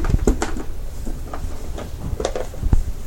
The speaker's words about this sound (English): I seem to be stuck in here. Can someone get the door open? It's jammed very tightly.